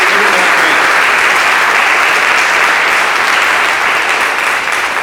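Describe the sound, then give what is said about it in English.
An audience breaks into loud, sustained applause for the teachers, a dense wash of many hands clapping at once that holds steady for several seconds before easing slightly at the end. “Can we give it a clap for our teachers?”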